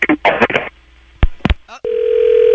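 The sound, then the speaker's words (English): Brief garbled phone-line voice fragments and a couple of sharp clicks as a phone call cuts off while the caller keeps losing service, followed by a loud, steady dial tone that hums on without a break. “Don't hang up the phone again.”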